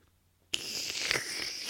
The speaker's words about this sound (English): Let me just have a sip of tea.